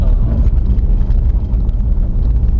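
A loud, rough car engine rumbles, a deep, throaty roar that stays strong for a few seconds, mixed with gusty wind noise and no voices.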